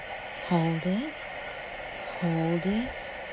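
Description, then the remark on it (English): Ocean waves make a steady, unbroken rushing wash throughout. Two short, voice-like tonal sounds rise briefly over it, each lasting about half a second. “Do you hear the sound of the ocean?”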